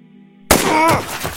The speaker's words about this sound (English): Another shot rang out. This time, it hit the captain in the leg, causing him to finally fall.